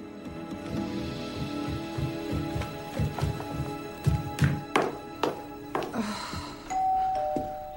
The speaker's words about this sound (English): And then we're going to see June knock on her door.